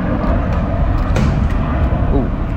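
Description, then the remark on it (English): A police helicopter passes overhead in Los Angeles on a 95-degree summer day, its loud, steady low rumble and rotor drone filling the whole moment, with faint indistinct voices underneath. “Oh, police copter.”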